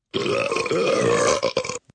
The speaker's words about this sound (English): Can't believe that we sat there for probably 5 minutes swallowing air to do all of those burps. That was us. That was the two of us.